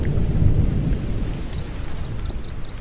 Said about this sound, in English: This is the sky so vast and high, sometimes sunny and blue and warm, sometimes filled with a thunderstorm, with zigzag lightning flashing and frightening